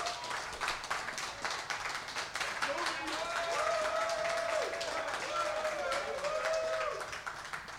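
Audience applause: dense, steady clapping fills the whole stretch, with loud whoops and cheers rising over it through the middle before it begins to thin out.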